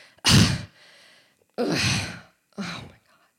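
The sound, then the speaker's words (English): Three heavy, exasperated breaths: a long forceful huff, a second drawn-out exhale, then a shorter one. A person voices them as an imitation of her breathing two weeks into a pregnancy, with no talking. “A short 2 weeks into the pregnancy, just as those pregnancy books had warned, I started breathing in that exasperated way.”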